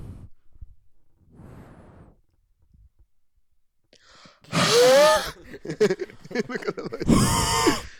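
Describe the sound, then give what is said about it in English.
A voice imitates heavy breathing: a few soft, quiet breaths at first, then loud, raspy, strained gasps and huffs in two strong bursts. “He's breathing.”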